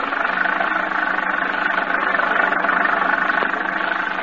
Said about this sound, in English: The little car lurches and bounces in its fight to keep center of the highway.